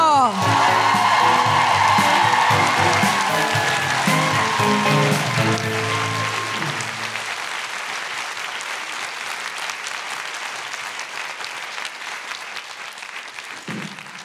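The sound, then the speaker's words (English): Loud, sustained audience applause welcoming poet Tusiata Avia to the stage, with voices cheering and whooping over it at first, then a steady, slightly softer wash of clapping that continues to the end. “Please welcome to the stage, with your revolutionary, orgiastic, best applause, the incredible Tusiata Avia!”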